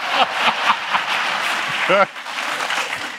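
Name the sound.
audience applause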